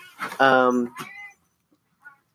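A cat lets out a loud, drawn-out meow, followed by a shorter meow and a faint little chirp after a brief pause.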